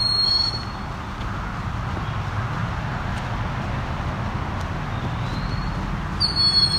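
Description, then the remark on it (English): Shrill, piercing begging screams of a very dark young Cooper's hawk ring out briefly at the start and again at the end, over a steady low background rumble with no voices. “This guy really does sound like an alarm got set off.”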